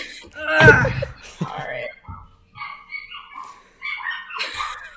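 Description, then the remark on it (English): A dog gives a loud, sharp bark near the start, followed by a series of softer, higher yips and whiny barks over the next few seconds. “Can you hear my dog?”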